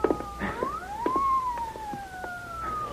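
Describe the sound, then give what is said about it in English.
A police car siren wails in long rising and falling sweeps as it approaches, holding fairly steady in volume over a few seconds, with faint clattering noises underneath and no one speaking. “Yeah, hey, listen. Police car.”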